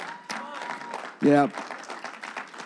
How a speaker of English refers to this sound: Hey, superheroes, and give a hand clap for yourself for all your amazing serving.